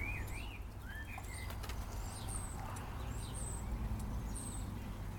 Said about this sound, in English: It's a beautiful spring day, the birds are singing, the dog is pottering about